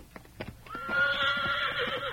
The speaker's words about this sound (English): Nice looking horse you got there.